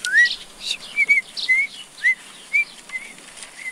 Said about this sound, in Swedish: Det är inte klokt vad jag kan vissla bra.